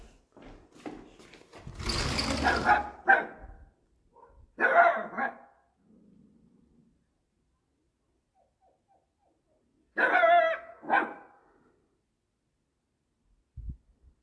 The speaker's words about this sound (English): Some neighbors barking at the neighbors. The dog is barking at the neighbors.